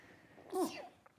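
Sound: sneeze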